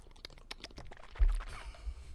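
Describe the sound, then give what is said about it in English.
Quiet plastic crackling and a cap twisting open, followed by a soft low thump and faint gulping sounds of someone drinking water from a water bottle. “You're going to hear me open a water bottle and drink some water.”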